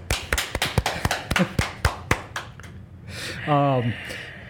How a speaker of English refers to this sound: Applause, applause. Can we get that up?